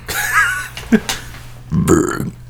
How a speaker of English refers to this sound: That was pretty wimpy, I'm sorry. It really was. And also, it was one of those really bad burps where you got just like a tiny bit of like... Burn.